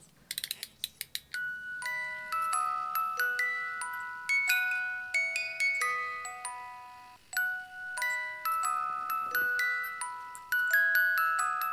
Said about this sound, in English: Ooh, I have an awesome little Wizard of Oz box. Which is a little music box. Mm-hmm. Can we hear that? Oh, yeah.